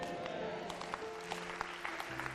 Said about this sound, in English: Come on, if you are clapping your hands, clap it well.